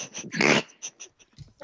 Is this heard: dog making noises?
yes